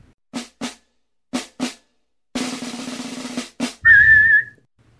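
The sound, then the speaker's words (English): A group whistles a march-like tune in short, rhythmic notes, then a longer held passage, ending on a bright, high sustained whistle. The sound is clear, with no talking. “There was the whistling at the beginning.”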